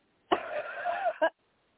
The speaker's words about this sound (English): You're going to have to cough, dear. All the way. Don't swallow anything. Cough it out.